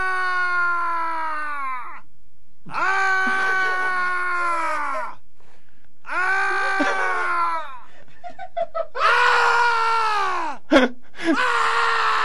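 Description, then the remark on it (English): A man lets out a series of long, loud, anguished screams, each held for a couple of seconds with brief gaps between them, with no other sounds; a screaming sound effect found on a website with Halloween-themed music. “I found another sound. Ooh. And it's called Man Screaming, and I thought, well, that would be, that could be, I could use that.”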